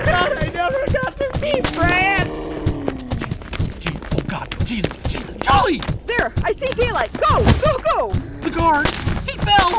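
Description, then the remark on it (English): Firecrackers pop and crack in rapid, irregular bursts throughout, loud, while several voices shout and talk over the steady barrage. “I'm out of firecrackers.”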